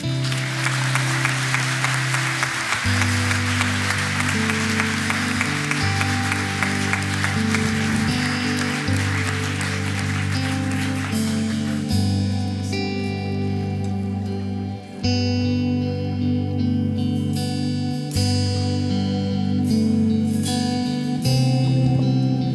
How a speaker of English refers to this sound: I want you again with that pent up applause to please applaud them for this decision.